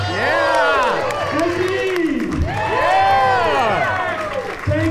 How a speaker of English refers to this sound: Don't just clap for me. All of the artists in the room right now, stand, wave your hands above your head, and take a bow.